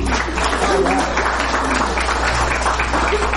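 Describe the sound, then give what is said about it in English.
A church audience at KTP claps steadily for the Lord, a dense, continuous wash of many hands, with scattered voices murmuring and calling out underneath. “Somebody give the Lord a hand clap.”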